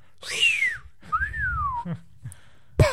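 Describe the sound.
A person whistles two clear notes: a short downward slide, then a longer tone that rises and falls. A few faint low noises and a sharp knock follow near the end.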